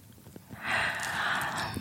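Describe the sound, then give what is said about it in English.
A long, airy breath blown into a microphone, a steady breathy rush that swells after a brief quiet start and holds for over a second, with no voice. “There was no crunch. It was just you breathing into the microphone.”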